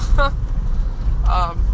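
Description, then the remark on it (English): Steady low engine and road rumble fills the cabin of a moving car on the way to get food, with two brief voiced sounds from someone inside breaking over the drone. “… decided to get in the car”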